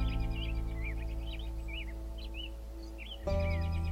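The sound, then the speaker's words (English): American robins bicker in short, repeated chirps and whistles high overhead, flying back and forth between tree branches above the edge of a field, over a steady low droning hum that steps up in loudness near the end. “when in actuality I was just sitting here at the edge of the field leaning against the trunk of a tree and watching some American robins bicker high above me.”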